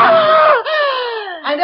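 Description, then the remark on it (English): A woman lets out a loud, shrill scream that holds for over a second, its pitch sagging downward and briefly breaking before surging again at the end. “Why did you scream?”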